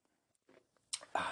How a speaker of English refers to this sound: Coffee sip, black, no sugar, Superman mug, you know the drill.